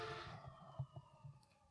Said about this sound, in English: And there's the sirens.